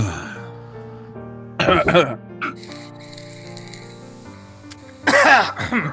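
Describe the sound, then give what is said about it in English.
Two separate bursts of coughing and throat clearing, each about half a second, fairly loud against a steady low humming tone that continues underneath. “Last vape call, last sip, whatever you need to do. Cough, blow your nose.”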